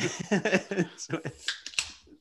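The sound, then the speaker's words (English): A quick run of sharp computer keyboard key presses, several clicky taps in fast succession, following a stretch of voice sounds at the start. “No, I don't want to turn on sticky keys, you bastard.”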